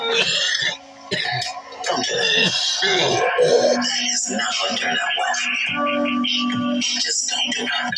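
coughing fit

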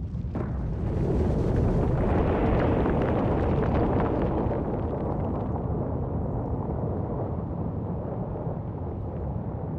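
volcanic eruption explosions

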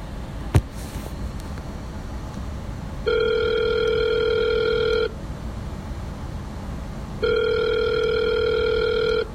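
phone call ringing

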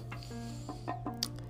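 chicken clucking

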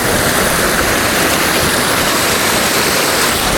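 river water flowing

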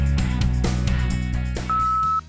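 voicemail beep

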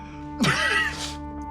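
sneeze

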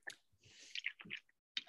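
drinking water

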